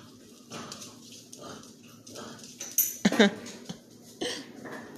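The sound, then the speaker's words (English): Two dogs tug on a really ripped-up ball, play-fighting with growly, snuffling bursts and a few sharper yips or whimpers, thumps and scuffling between them. “And again, those are my dogs. They're tugging on a really ripped up ball.”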